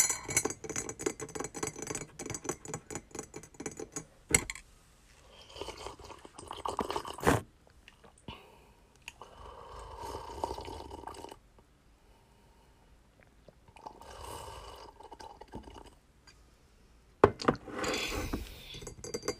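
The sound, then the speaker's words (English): Strawberry fruit tea from Top Tea, just poured, sloshes and trickles inside a glass, with soft clinks and taps of the glass being handled, broken by brief pauses and a couple of sharp knocks. “I have some strawberry tea, fruit tea, milk tea. Not milk tea, but it's like fruit tea.”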